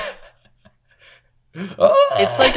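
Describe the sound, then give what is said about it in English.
A person imitates a sharp, breathy gasp: a brief quiet stretch, then a loud, airy voiced intake that rises and lingers for about a second. “It's like a very strong, breathy gasp.”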